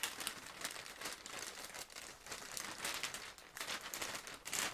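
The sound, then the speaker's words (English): Continuous crinkling and rustling of slightly torn gift wrap paper as it is wrapped around a gift and folded, with irregular crackly bursts throughout and no voices. “Get a good feel for how much paper we need. And then we'll just cut.”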